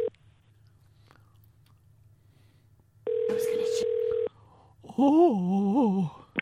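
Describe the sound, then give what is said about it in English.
After a quiet stretch with low hum, a steady electronic phone tone sounds for about a second, followed by a short burst of a voice answering on the line. “It must be my phone.”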